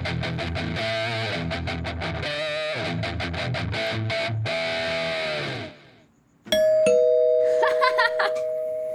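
A heavy-metal doorbell chime blasts a loud, distorted guitar-like riff of choppy chords that rings out and fades, then after a brief pause a bright, sustained electronic chime tone sounds.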